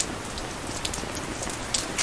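rain falling

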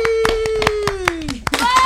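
people clapping hands

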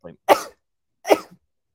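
sneeze

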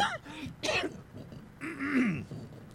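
coughing and throat clearing

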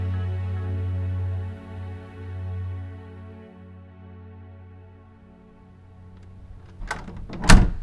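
bedroom door being closed

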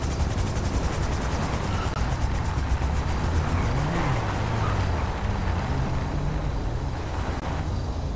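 helicopter flying overhead

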